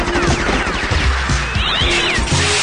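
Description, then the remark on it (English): A kitten stuck in a tree meows repeatedly in high, plaintive cries over a dense, loud background of clattering and thumping noise, with no clear talking. “My kitten is stuck in that tree.”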